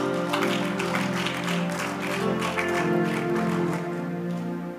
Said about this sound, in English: You should be clapping by now.